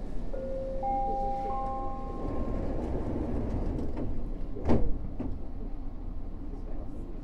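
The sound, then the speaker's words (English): A train rumbles steadily along the rails, with drawn-out metallic squeals early on and a sharp clunk about two-thirds through, continuous with no voices. “More than my fears, more than my nerves, I wanted to take this chance to share this beautiful thing about living together in cities: that trains exist to take us to our destination, that trains exist to run not for you, not for me, but for all of us.”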